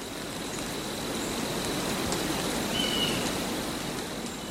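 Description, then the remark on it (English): Gentle rain falls in a pine forest in a steady, soft hiss that fills the whole stretch evenly, with a faint high chirp briefly rising over it and no voices; from side two of an album. “And side two was ….”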